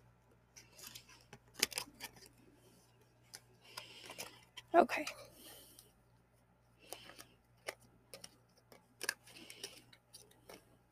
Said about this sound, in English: So what I usually do, or what I've been doing lately, is I've been shuffling, and when a card falls out, I know that's the card that I need to read. So, we're shuffling and waiting for a card to fall.